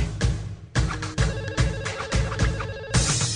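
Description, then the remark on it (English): A tinny, ringtone-style rendition of a pop tune plays loud, with steady thumping beats under a thin, synthetic melody and no voices. “Yeah, is that my phone ringing? I don't like this. This is not a good version.”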